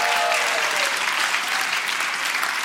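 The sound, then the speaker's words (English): Steady, dense applause from an audience, many hands clapping at once in a loud, continuous wash of bright crackling noise that holds level throughout without a break. “A round of applause again.”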